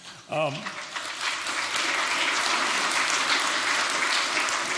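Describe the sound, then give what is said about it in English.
A crowd at a church service breaks into steady, loud applause that carries on without pause to the end, preceded by a brief snatch of a voice at the very start. “I don't know if there's anything to clap about.”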